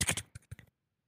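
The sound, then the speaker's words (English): A quick flurry of keystrokes on a small keyboard, fairly crisp, a half-dozen clacks tapped in rapid succession before falling silent. “This little keyboard.”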